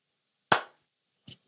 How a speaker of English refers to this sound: Do you, if I put my headphones over my mic, do you want to clap and then you'll find it like your producer will be able to just sync it up really easily?